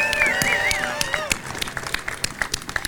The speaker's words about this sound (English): It means so much. So why don't you give yourselves all a big round of applause? Thank you.